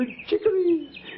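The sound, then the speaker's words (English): A person's voice imitates a goldfinch's song: one short, sliding, warbling call, clear, with no real bird or other sounds around it. “Oh, the goldfinch has really one of the loveliest of all bird songs.”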